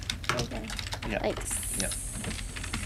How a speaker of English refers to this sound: What are you typing? I'm typing a tweet to Pat Sharp.